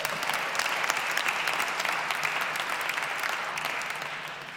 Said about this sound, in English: Somebody clap for that.